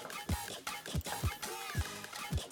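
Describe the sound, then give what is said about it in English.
A spoon stirs chicken into a smooth sauce in a pot, with repeated low knocks and wet scraping sounds in an uneven rhythm, fairly quiet. “Then I'm gonna mix it up together.”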